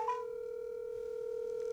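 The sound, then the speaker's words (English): A steady, unbroken telephone tone hums at moderate volume for the whole moment as a phone call is being placed, one even pitch with faint overtones and no voices over it. “Okay, let's make a phone call.”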